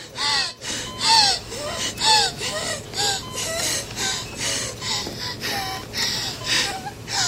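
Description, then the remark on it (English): A woman in her 20s on a ventilator gasps for air over and over in ragged, strained breaths while trying to rip the ventilator out, in a federal government ad played in Sydney, with a steady mechanical hum underneath, fairly loud throughout. “She's basically trying to rip the ventilator out and trying to gasp for air.”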